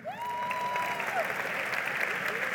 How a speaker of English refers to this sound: how many people are having their best business year ever? Raise your hand. Raise it high. First of all, let's clap it up for them.